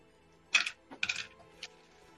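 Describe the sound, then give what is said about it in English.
A handful of dice, rolled for lightning bolt damage, clatter onto a hard surface in several quick bursts of bright clicking and rattling, followed by a final lighter tumble, with no talking. “You are rolling just too many dice.”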